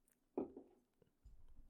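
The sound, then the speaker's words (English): A person takes one big, wet sip of a drink, quiet, followed by a short pause and a low muffled rumble near the end. “Big sip. Big sip. Thirsty.”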